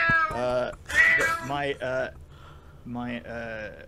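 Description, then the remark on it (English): A cat meows several times in quick succession, with drawn-out, pitch-bending cries that rise high midway, fairly loud, with short pauses between calls. “My granddaughter decided that she was going to sit somebody else's cat.”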